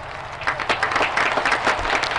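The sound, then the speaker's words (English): A crowd applauding in the virtual world Second Life, with many hands clapping in a dense, steady patter of sharp overlapping claps that holds at a fairly even loudness throughout. “Oh, that's people clapping.”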